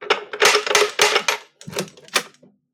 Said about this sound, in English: I'm starting to think that typewriter gives you too much power.